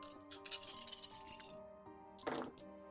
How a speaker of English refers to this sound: make an additional humanity roll, this time with pool of 7 dice, his current humanity rating. He has no willpower. No willpower. So there's none to add to this roll. 7 dice. I don't have enough red dice. All black.